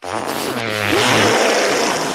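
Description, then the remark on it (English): Several people blow hand fart noises at once, each making a different one, overlapping buzzy, sputtering squelches at different pitches that run together for about two seconds, loud, with no talking. “We're gonna all make a different fart noise.”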